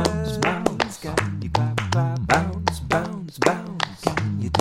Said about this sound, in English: Clapping, clapping, clapping. Can you clap your hands? Tapping, tapping, tapping. Let's clap our hands.